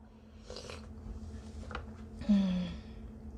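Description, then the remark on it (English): A few quiet sips of hot tea, each a soft breathy slurp, followed by a louder satisfied exhale with a faint voiced hum. No one speaks. “But Whew, take another sip of this.”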